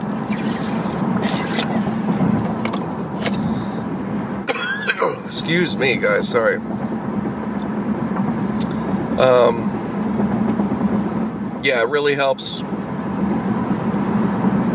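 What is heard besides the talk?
road traffic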